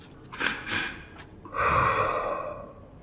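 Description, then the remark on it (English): A voice imitates a creature sniffing at the air: two short, sharp sniffs, then a long, loud, raspy gulp of air. Unaccompanied, with no talking. “You can hear it sniff at the air, big gulps of air.”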